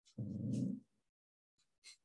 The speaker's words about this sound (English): Dogs are barking.